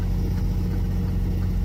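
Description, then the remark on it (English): A truck engine rumbles steadily with a deep, low drone, holding an even loudness throughout, from a truck that crashed at the base of a ramp, with no voices and no sudden impact. “Now, sometimes they go up the ramp, but this guy just crashed at the base of the ramp.”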